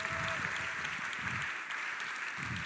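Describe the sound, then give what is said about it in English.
An audience claps steadily, a dense, continuous wash of many hands with no single claps standing out, fairly loud and sustained throughout, with faint bursts of voices underneath. “Look at the way you are clapping.”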